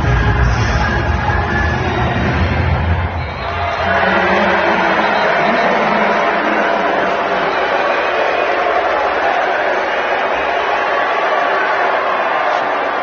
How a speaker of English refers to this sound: They mercilessly brought out the boo birds, booed the Albany cheerleaders. Here is some sound from this event where they're booing the cheerleaders.